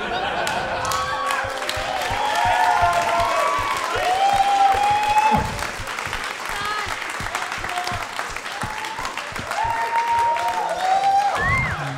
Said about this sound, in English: That is the least deserved applause break I have ever gotten.